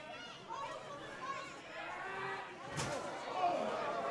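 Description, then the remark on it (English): A steel chair cracks against someone's back during a match in one sharp, loud impact, rising out of a steady murmur of crowd noise and chatter. “All I hear is steel against skin.”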